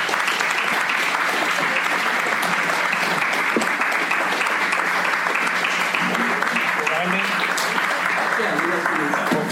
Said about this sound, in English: Please give them a round of applause, today's panelists.